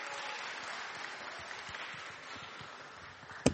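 A crowd claps steadily, a dense wash of many hands applauding together, moderately loud and sustained throughout, with a sharper knock or thump near the end.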